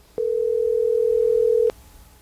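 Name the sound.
telephone ringing tone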